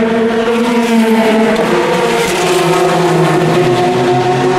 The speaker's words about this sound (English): Never mind, we got the sound of cars to enjoy. Here's some more car sounds. I'll stay quiet for a bit.